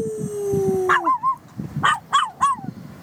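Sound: dog howling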